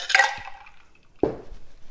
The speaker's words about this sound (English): I've got some ice cubes here.